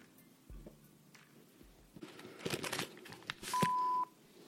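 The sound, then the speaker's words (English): A single steady, mid-pitched electronic beep lasts about half a second, loud and clear, following a few seconds of soft clicks and rustling noise. “And sorry about the new beep.”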